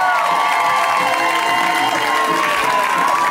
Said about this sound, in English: So please welcome the stage with that big round of applause that we always give when it's somebody's first time,